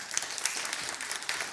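Audience applause after a talk at a panel event, a steady wash of many hands clapping at moderate volume with dense, crackly texture throughout, no voices on top.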